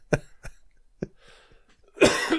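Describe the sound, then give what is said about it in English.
Three short, sharp coughs in quick succession, followed after a brief pause by a longer, harsher cough with a raspy throat-clearing quality. No talking. “I'm just going to have a cough thing for a moment.”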